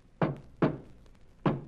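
Three dull knocks on a wall, knocked back in reply to a man on the other side so he can tell which wall it is; the first two come in quick succession and the third after a short pause, each a low, resonant thud that fades quickly.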